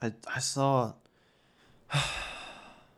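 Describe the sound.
A brief voiced vocal sound, then a man's sudden, sharp, breathy gasp that bursts in loud before trailing off over about a second.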